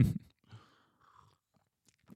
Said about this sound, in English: Let me take one more sip of espresso.